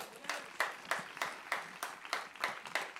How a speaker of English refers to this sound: Give a big, big round of applause for Liz.